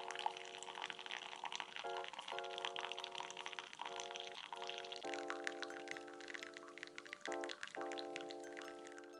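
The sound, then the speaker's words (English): Hot water is poured steadily in slow circular motions over drip coffee grounds to make a cup of drip coffee, a continuous splashing trickle whose pitch shifts slightly as the stream moves, with no one speaking. “Now the most relaxing part, pour the hot water over the coffee using slow circular motions.”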